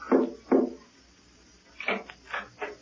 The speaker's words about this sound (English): There was a cautious knock on the door, repeated three times.